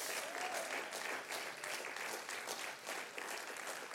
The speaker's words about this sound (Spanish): Dale un fuerte aplauso al Señor, por favor.